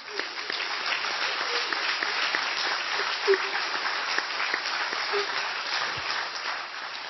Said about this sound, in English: It closed and now is being turned into the Ozaki Christian School. Please applaud.